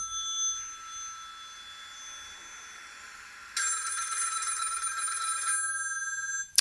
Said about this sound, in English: So I figured I'm going to do all of it at the same time. I'm going to make my first phone call and see if this new person is